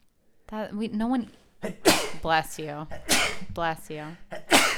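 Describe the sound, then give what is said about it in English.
A sharp, breathy sneeze bursts out, surrounded by voiced talking and murmuring that continues before and after it. “Bless you, son.”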